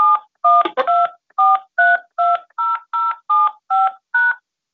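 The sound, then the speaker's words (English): A rapid series of about ten telephone keypad tones, each a short dual-pitched beep, punched in quick succession as someone dials an access code for a Free Conference Call HD line, clear with no voices. “Access code or phone number you have dialed is incorrect.”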